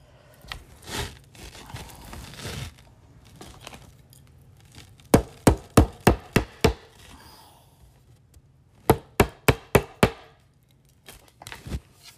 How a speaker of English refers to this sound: Anyway, just a sec. I'm going to hammer this one more piece.